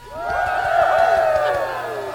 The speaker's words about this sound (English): I've got a new sound effect. I'll be back. It's called Cheering Crowd.